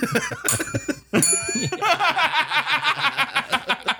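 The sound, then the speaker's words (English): A small bell is rung twice in quick succession, bright and ringing, then a burst of rhythmic laughter follows. “You lose bell privileges.”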